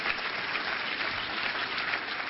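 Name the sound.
audience hand clapping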